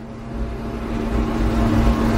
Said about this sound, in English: It was the leaf blower.